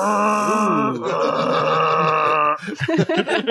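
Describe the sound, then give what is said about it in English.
A voice imitates a foghorn with one long, loud, low buzzing drone held for a couple of seconds, then dissolves into short bursts of laughter. “It's a fog horn sound.”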